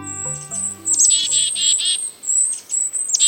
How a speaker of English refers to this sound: Take a walk in a temperate woodland this month, and you might hear this chorus. A closer look and listen reveal that this foraging flock includes several species of birds, chickadees, kinglets, and even a downy woodpecker.